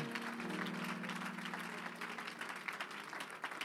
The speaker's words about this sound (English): I wonder if you could clap your hands to the Lord before you're seated. Come on, let's praise him.